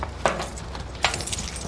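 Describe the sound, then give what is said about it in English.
Two sharp metallic clinks, about a second apart, as keys and watches are dropped into a hat, with a soft rustle and low background hum between them and no talking. “We'll put all keys and watches in the hat over there.”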